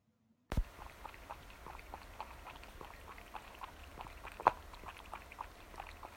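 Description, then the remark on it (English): Peach, a cat, laps ice-cold water, just fetched from the kitchen, from a glass: quick, soft, wet licks repeating in a steady rhythm, with one sharper clink partway through and no voices. “What you are listening to is my cat Peach rudely drinking out of my ice cold water that I just got from the kitchen.”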